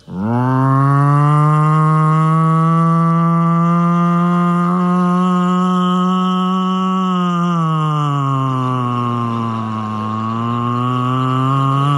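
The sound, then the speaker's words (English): A slow, old-fashioned siren at the end of the Hitchcock film Rope, following a gunshot, wails on one steady, low, buzzy tone, then sags lower near the end and lifts slightly again. It sounds loud and continuous for about twelve seconds, with no talking. “And then you hear this old-fashioned siren. And it was so slow and beautiful.”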